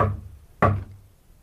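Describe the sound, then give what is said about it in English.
Two heavy bangs on a communicating door, about half a second apart, each a loud, booming thud that quickly dies away, with no voices. “I'll bang on the communicating door.”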